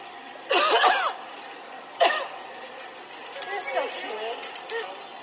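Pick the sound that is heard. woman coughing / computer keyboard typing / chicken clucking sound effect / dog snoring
woman coughing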